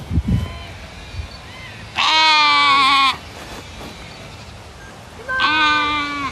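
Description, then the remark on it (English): Southdown baby doll sheep bleating loudly, two long wavering bleats a few seconds apart over a quiet outdoor background with a brief low thump near the start. “When Deb Royans decided to start breeding Southdown baby doll sheep, she didn't realise they would take off in popularity”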